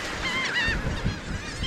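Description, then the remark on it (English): A flock of migratory shorebirds calls in overlapping, nasal cries on the shore at Reed's Beach on Delaware Bay, New Jersey, over a steady low rumble of wind and surf. The birds sound fairly loud, with no one speaking. “Here at Reed's Beach, small flocks of birds crowd the shore and swoop through a pastel sky.”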